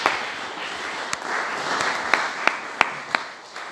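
An audience gives a round of applause, a steady wash of many hands clapping, with a few sharper, louder individual claps popping out near the end as it begins to fade.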